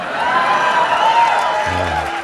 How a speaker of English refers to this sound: Don't applaud that.